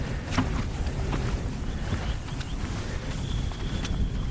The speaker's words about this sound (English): A bit windy, heading up a slope.